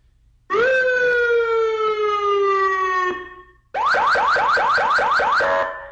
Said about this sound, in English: Now, I'm glad I got the panic alarm button here, because much like DJ Moore, we need to talk about Kenyon Drake.